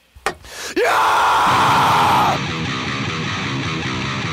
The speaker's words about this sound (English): Give me a scream